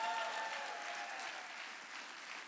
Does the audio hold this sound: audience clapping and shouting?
yes